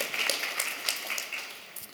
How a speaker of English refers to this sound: So everybody give a big applause